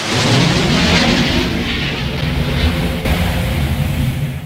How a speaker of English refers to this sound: The train followed by plane. F-111.